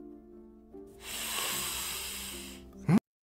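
A long, drawn-out sniff, a steady airy hiss of breath lasting a couple of seconds, fairly loud over a low humming tone, ending in a sharp rising squeak.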